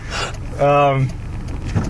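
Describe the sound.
A single buzzy, beep-like chirp of a car being locked, lasting about half a second, fairly loud over faint background noise; it may be a voice imitating the sound.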